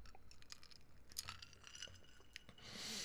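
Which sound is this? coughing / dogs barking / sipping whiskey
sipping whiskey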